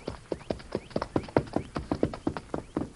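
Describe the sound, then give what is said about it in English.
The hooves of Silver, the masked man's horse, clip-clop in a quick, steady rhythm as he rides up to a small cabin in the hills and reins up, a dozen or so sharp knocking beats of even loudness, with no voices. “When he came close and reined up, he saw the door swing open,”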